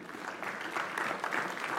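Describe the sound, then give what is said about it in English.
An audience at a church service claps steadily to welcome visiting guests from China, a dense wash of many hands at moderate volume with no clear gaps, lasting a couple of seconds. “Sorry, it's hard to clap with a sword in your hand.”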